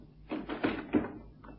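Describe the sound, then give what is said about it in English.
A locked door's handle is rattled and tried several times in quick succession, a few short clunks and jiggles, with nothing giving way; the door is locked from inside. “Strange. The door is locked from inside.”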